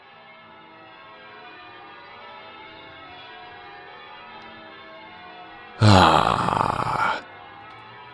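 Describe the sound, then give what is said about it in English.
College church bells ring around 9 o'clock in the morning, a steady blend of overlapping tones and lingering hum. Near the end, a much louder, rough burst briefly swells over them, then drops away. “Ah, hear the ringing of the bells. College bells.”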